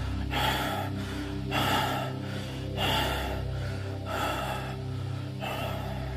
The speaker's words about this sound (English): Now you have reached the top of the mountain. Your breath continues to rasp in rapid gasps.